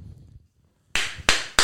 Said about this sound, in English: He's clapping. Can I join in? Yeah, clap yourself. We're clapping.